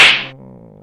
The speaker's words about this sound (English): That's a slap for you